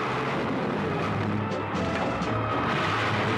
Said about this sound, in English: This guy is smashing down the walls. There's dirt falling everywhere. He wants to piss these things off.